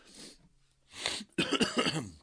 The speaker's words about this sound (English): That's not a COVID cough, I promise. I test very often. It is not a COVID cough.